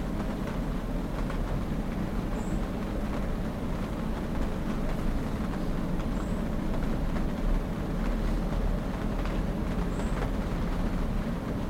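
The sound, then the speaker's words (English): Steady, dense rain falls in an unbroken hiss with fine crackling texture, while a faint high chirp surfaces about every four seconds above the wash. No voices are heard. “For instance, notice that the sound of the rain takes place in exactly the same space of awareness as do your thoughts and feelings.”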